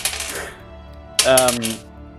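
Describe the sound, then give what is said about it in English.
Four six-sided dice rattle and clack across a hard surface in a short burst of clicks, then a voice briefly sounds over the last of the clatter. “I will roll 4d6.”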